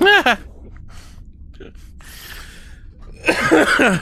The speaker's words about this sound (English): That was a genuine, like, that's how the cough, that's how my laugh came out. Like a really high-pitched, weird thing, because my throat's a mess. Was that a cough or was that a laugh? That was a laugh, and then it turned to a cough.